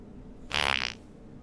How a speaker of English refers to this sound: To cover a fart? No.